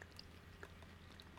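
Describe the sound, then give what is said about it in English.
Quiet chewing of a crunchy crisped-rice Reese's-type candy bar, with a few small, scattered crackly crunches over a low background hum and no talking. “It has this little, like rice crispies, like crunch, but it tastes like the Rice Krispies have been out for a year.”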